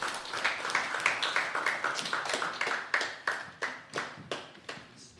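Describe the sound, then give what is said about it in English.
A small group claps and applauds for about five seconds, with steady, slightly overlapping hand claps at a brisk pace, fairly even in loudness. Nobody speaks. “Round of applause for our broadcast discussion.”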